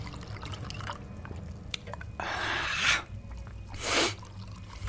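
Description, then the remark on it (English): A drink is poured into a glass in two short splashing bursts, the second brighter and briefer, after a few light clinks, with no talking and quiet behind it. “But, as any rational-minded person would have done, I put it down to the lateness of the hour and an overactive imagination, and went instead to pour myself a drink.”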